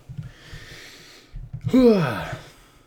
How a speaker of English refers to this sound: That's how I'm breathing. I'm breathing so strange.